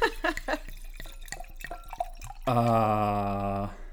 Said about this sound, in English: Anyway, so we missed the pot, but here's the pour. You ready?